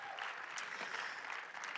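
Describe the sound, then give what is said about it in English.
A crowd claps steadily for a speaker, a dense wash of many hands applauding at an even, sustained level with no voices standing out. “So let's give Marco a big round of applause.”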